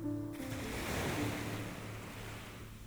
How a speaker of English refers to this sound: And the sound of the waves activates the parasympathetic nervous system, which promotes relaxation.